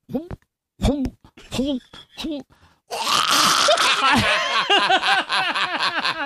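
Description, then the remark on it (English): A person imitates a dog retching: a few short, spaced heaving groans, then a louder, continuous burst of gagging and choking noises with rhythmic pulses, like coughing up a hairball. “I'm going to give you my impression of a dog throwing up.”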